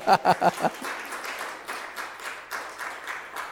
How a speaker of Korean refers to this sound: 이러면 하나님께 영광의 박수 올려야 되는데 이거.